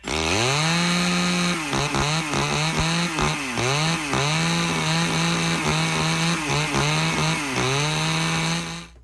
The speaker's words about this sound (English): All right. That's a chainsaw. That is a chainsaw.